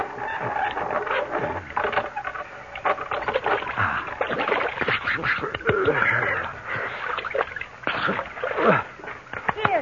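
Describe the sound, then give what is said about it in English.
Water splashes and sloshes in repeated irregular bursts, like liquid being poured and stirred in a container, as a tired horse is watered, with faint murmuring voices underneath. “Your horse looks tired. You'd better water him.”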